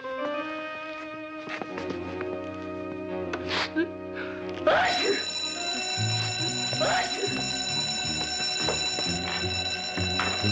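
About halfway through, an alarm bell set off by remote control starts ringing loudly and keeps going without pause to the end, layered over busy music and occasional vocal sounds.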